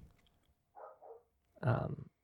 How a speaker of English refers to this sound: Dogs barking, which I'm just going to have to get over because they're just going to... It's just going to happen, right?